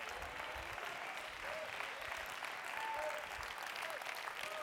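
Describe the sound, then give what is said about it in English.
An audience claps hands in a dense, steady wash of applause lasting the whole stretch, with a few faint voices calling out underneath. “I still can't get everybody clapping their hands.”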